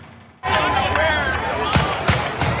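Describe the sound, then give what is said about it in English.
A barrage of gunshots rings out outdoors, outside a high school graduation near the campus of Virginia Commonwealth University in Richmond: several sharp, loud bangs at irregular intervals over a crowd's raised voices and screams. “This is the moment a barrage of gunfire pierced the celebration.”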